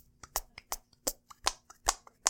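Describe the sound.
A rapid string of about ten short, squelchy armpit farts, each a sharp burst with an uneven rhythm, some louder than others, with no talking over them.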